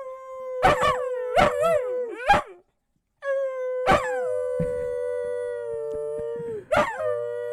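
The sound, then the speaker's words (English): A female dog howls in long, sustained wavering tones, broken by a few sharp yips, with a brief pause before the howl resumes and trails on. Fairly loud, with no talking. “What if you're just saying the N-word in dog and she's repeating it back to you?”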